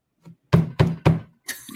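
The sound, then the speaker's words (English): Three loud, heavy thumps of someone banging on a desk in quick succession, each with a deep low-pitched knock, preceded by a faint tap and followed by a softer rustling bump. “So anyway, quit banging on your desk.”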